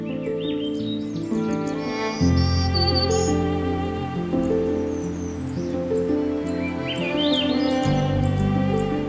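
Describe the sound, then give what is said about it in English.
Swainson's thrush, myrtle warbler and other birdsongs ring out at Pine Tree Point along a trail, in bursts of high chirps and rising, spiraling phrases, set against a steady, droning low background with no talking. “I've reached about as far as I'd like to travel today at Pine Tree Point, so I'm stopping and listening to Swainson's thrushes, myrtle warblers, and other songs around me before turning around and returning to the trailhead.”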